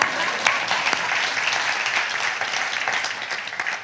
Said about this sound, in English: And so that's awesome. Clap.